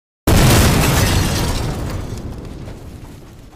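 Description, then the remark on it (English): A single loud explosion bursts in suddenly after a brief silence, a broad roaring blast that rumbles and slowly fades over a few seconds, with no voices present. “Don't forget the explosion noise, but be sure not to aim the RPG at me this time.”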